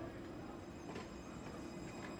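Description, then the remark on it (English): A steam train engine rumbles steadily at low volume, with faint, evenly spaced puffs rising over a constant mechanical hum, the train standing at a country station platform about to start off. No voices are heard. “The engine was puffing and the bell was ringing, for the train was about to start off again.”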